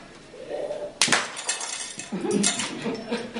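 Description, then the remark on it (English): A sharp punch at about one second smashes a glass enclosure, setting off a loud crash of breaking glass, followed by scattered tinkling shards and debris settling over the next couple of seconds, with faint voices underneath. “With a mighty punch, the glass menagerie holding Mr. Adventure is no longer an obstacle.”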